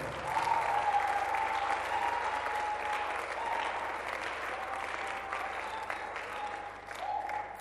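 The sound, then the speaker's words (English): Sustained applause from a large crowd fills the whole stretch, a dense, steady wash of clapping at fairly even loudness, with faint voices mixed in and no clear talk over it. “You can clap.”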